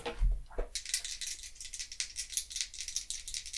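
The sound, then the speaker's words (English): A soft thump, then a steady, bright clattering rattle of dice rolling and tumbling for a few seconds for a history roll, with no one speaking. “I suppose you could roll history. I can try that.”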